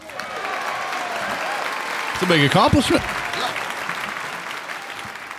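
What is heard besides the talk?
round of applause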